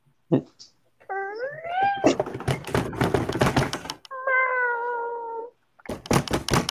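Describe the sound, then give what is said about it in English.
A cat lets out two long, drawn-out meows, the first rising and the second slowly falling, with people talking between and after them and a brief knock at the start. “The cat was on cue.”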